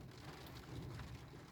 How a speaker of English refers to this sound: as the rain clouds gather again over my head here in this moment